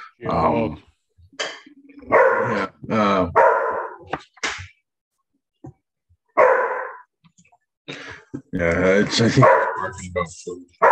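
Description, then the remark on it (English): A dog named Daisy barks repeatedly in uneven bursts, loud, with short pauses between clusters of sharp barks and a few yips; a voice can be heard briefly amid the barking. “Because somebody's in the kitchen doing stuff, so fucking dogs being a bitch.”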